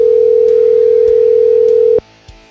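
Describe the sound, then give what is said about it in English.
A steady, loud telephone dial tone hums continuously for about two seconds while a phone call is being placed, then cuts off abruptly into near silence with a faint click afterward. “I was texting with him a minute ago, and let's see if we can get him on the phone here.”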